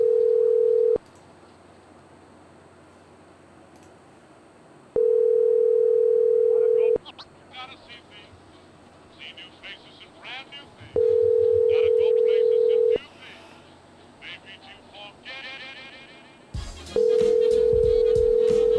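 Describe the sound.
A telephone ringback tone repeats four times while calling a McDonald's store that does not answer, each steady two-second ring followed by a pause of about four seconds, loud, with people talking in the background during the gaps.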